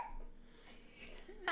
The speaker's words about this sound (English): Our baby has baby hiccups. Baby hiccups.